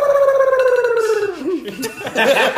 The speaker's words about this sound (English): That's the custom buzzer.